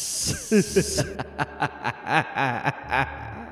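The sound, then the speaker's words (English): A steady breathy hiss runs for about a second, then breaks into a laugh: a string of short, rising-and-falling voiced bursts in an uneven rhythm, fairly loud. “You hear a hissing that bleeds into a laugh.”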